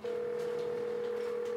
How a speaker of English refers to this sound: The phone rang 4 times. It was neither answered, nor did it go to voicemail.